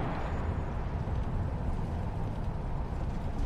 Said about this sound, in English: Kind of like this bus.